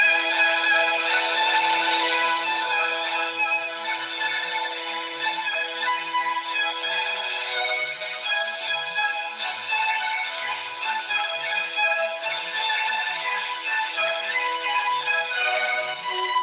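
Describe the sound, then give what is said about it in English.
A Verizon telephone ringback tone plays as a steady stream of bright, melodic music with layered tones, holding an even volume for the whole stretch with no voices. “Enjoy this Verizon ringback tone while your party is reached.”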